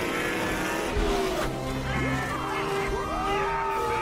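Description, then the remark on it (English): A race car engine roars and revs hard as the car speeds out of a pit stop, its pitch sweeping upward again and again as it accelerates away, loud amid a busy, noisy backdrop. “It was a great stop, but he's still got to beat that race car out.”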